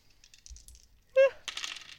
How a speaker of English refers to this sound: So, roll me your dice.